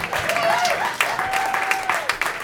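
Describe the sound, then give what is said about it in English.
Sustained audience applause at a comedy show for the evening's comics, a dense, steady wash of many hands clapping at a fairly loud level, with a faint tonal whistle-like line running through it briefly. “Keep that round of applause going for all of the comics that you saw this evening.”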